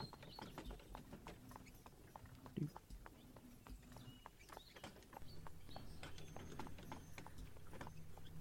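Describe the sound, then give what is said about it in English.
Three wolves pad through thick undergrowth beside a road in a quick, uneven run of soft crunches and thuds, fairly loud, over a low steady drone. “the brush around you is thick on either side of the road, and though you hear the faint callings of people trying to deal with panicked animals, the soft padding of the undergrowth slowly comes through as three wolves appear.”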